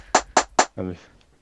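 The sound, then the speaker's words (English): Three loud, sharp percussive cracks in an even rhythm, an EQ'd hi-hat sample that sounds like gunshots, followed by a short voiced utterance. “That sounds like a gunshot, right?”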